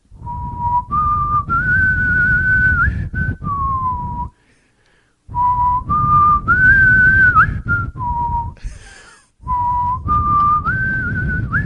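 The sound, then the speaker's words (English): A man sitting on his bed whistles a short tune, the same few notes stepping upward and then dropping back, repeated three times with brief pauses between each phrase. “And all he did was sit on his bed and stare at the wall and whistle and drive me crazy.”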